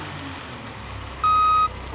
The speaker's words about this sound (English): But if a truck goes by and it's making that like engine noise and the squeaky air brakes and God forbid the backup beeping.